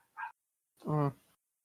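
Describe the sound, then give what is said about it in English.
A small dog yaps twice, a short sharp yip followed by a longer, higher, whining bark that drops in pitch, with silence in between. “Got a yappy dog again.”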